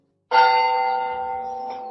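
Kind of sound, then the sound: signal or alarm, church bell ringing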